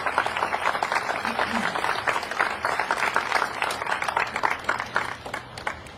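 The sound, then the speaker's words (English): A steady round of applause from a crowd in Great Falls thanking volunteers for 25 years of dedicated service at a place of honor, dense overlapping claps sustained for several seconds at a fairly even loudness before easing slightly at the end. “Please give a big round of applause to thank them for 25 years of dedicated volunteer service.”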